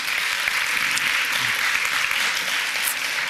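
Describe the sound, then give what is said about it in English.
A church audience applauds steadily for two people who have come up to tell their stories, a dense wash of many hands clapping at an even, fairly loud level for the whole few seconds, with no voices standing out. “Would you give them a round of applause first, and we'll just say...”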